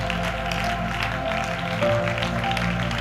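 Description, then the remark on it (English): A crowd clapping hands together while praying, a dense, steady patter of many claps lasting throughout, with a faint sustained low tone running underneath. “Clap your hands and pray that you will overcome.”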